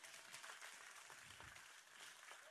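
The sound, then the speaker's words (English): An audience applauds God during a sermon, many hands clapping at once in a dense, sustained wash of sound that stays loud throughout with no voices breaking through. “And if you believe that, give him a hand clap right now.”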